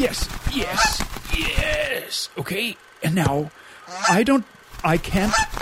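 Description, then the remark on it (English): A goose being grabbed and held by hand honks repeatedly, its loud nasal calls coming in short bursts and mingling with a person speaking a few brief words. “I don't know why I've taken the goose”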